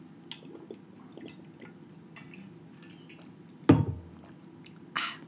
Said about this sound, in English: Hold on, we're all gonna take a water break. 1, 2, 3.